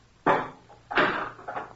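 A heavy furnace door, with a big fire burning inside, is levered open with a slice bar: a sharp clank, then a longer grinding scrape and a smaller rattle, fairly loud, with no voices.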